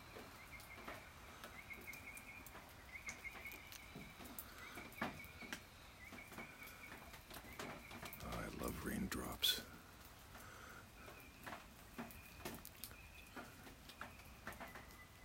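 Soft, irregular pattering of raindrops tapping steadily throughout, with a brief louder rustling burst midway and faint chirping in the background.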